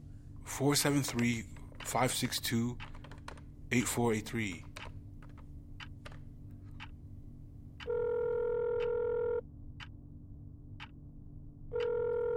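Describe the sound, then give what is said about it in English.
Voices talk briefly, then a run of quick clicks sounds like a number being dialed as a man held in a police cell makes his one phone call to his wife, followed by a steady electronic ringing tone on a phone line that stops, then starts again. “I get one phone call, don't I? Can I call my wife?”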